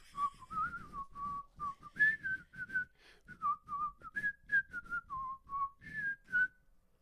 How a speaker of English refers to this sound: It's hard to whistle when you're smiling.